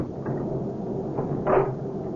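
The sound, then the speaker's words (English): A door is closed and locked with a single muffled thump about two-thirds of the way through, set against a steady, hissy background with faint knocks just before. “Honey, will you get the door closed and locked?”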